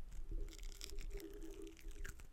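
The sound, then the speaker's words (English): Crunchy first bite into a hot, steaming chicken wing that is crispy on the outside and juicy inside: a few crisp, crackling bursts spread over two seconds, fairly quiet, over a steady low hum with no talking. “You gotta get up to the mic and see the crunches. Crunch the mic, baby.”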